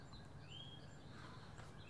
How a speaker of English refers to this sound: It's the actual bird song in the background that really brings us home. Oh, good. I'm glad they're back. I'm glad we can hear them again. The birds have followed you to Epcot like Snow White.